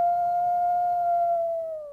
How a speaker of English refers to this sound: Let's live and let howl.